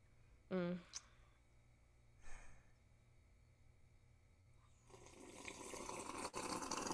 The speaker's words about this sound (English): I know she did not make all those sounds in my ears. ASMR. What tea are you slurping on today?